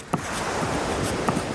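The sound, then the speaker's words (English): Pen scratching quickly across loose-leaf paper in continuous scribbling strokes as a blueprint is drawn, moderately loud, with a couple of sharper taps along the way. No voices. “He spreads it out like haphazardly and just starts scribbling that blueprint all over it.”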